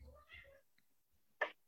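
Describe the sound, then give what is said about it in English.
A male cat named Libby meows: first a drawn-out, wavering meow, then after a short pause a brief, sharp chirp-like meow. No one speaks over it. “Our cat wants to join us.”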